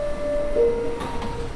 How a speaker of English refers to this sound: The train comes into the station and a bunch of people got in for free.